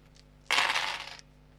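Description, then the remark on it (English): Twelve six-sided dice rattle and clatter across a hard surface in one dense burst lasting under a second, then settle into quiet. No one speaks. “Can I get you to just roll 12d6, please, for your mayhem?”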